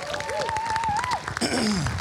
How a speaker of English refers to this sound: Give them a clap.